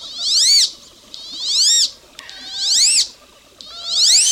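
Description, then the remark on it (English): A male wood duck calls four times in a row, answering his mate, each a thin, high whistle that rises and then slurs downward, evenly spaced and fairly loud, with no voices. “Although you're less likely to hear it, the male responds with this call.”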